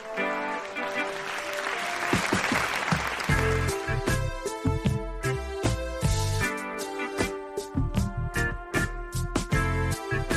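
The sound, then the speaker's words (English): An audience breaks into a round of applause for the host of One of One, a dense wash of clapping that fills the first few seconds before an upbeat music track with a steady, punchy beat takes over. “Now, please give a warm round of applause for your host”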